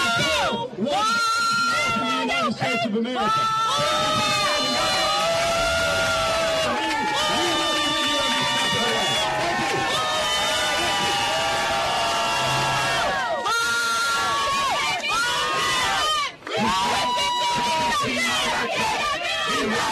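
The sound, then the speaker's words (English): A large rally crowd of Bernie supporters shouts and chants loudly and continuously, shouting down Mayor Pete at an event on a $15 an hour minimum wage, many voices overlapping in a dense, protesting roar with whoops rising above the din, sustained throughout. “And suddenly, the Bernie crowd is there. And they're not having any part of it.”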